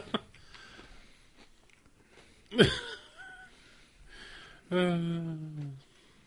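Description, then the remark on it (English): Heavy breathing right into the microphone, with a sharp loud rush of air midway and a longer, louder breathy huff with a voiced edge near the end. “move your mic again. You're breathing into it.”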